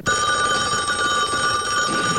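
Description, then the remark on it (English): A telephone bell rings loudly and continuously, a bright metallic trill sustained without a break for a couple of seconds, with no voices over it, in a scene from the film Black Christmas. “Your phone's ringing.”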